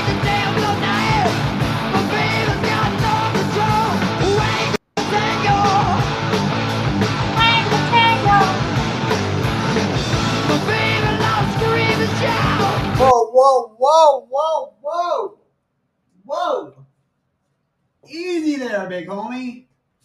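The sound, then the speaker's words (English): Dense, loud music plays in a live recording, then cuts out, leaving a man screaming and yelling alone in several short, strained bursts separated by brief silences, forceful. “Nobody wants someone screaming in their face at 2 a.m, you know what I'm saying?”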